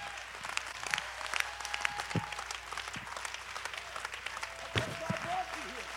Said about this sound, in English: Oh, let's stand to our feet and clap our hands.